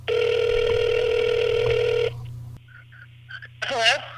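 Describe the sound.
A phone line rings out on an outgoing call to Maui, Hawaii, with one long, steady ringback tone lasting about two seconds. The line then goes quiet, and a voice briefly answers at the end.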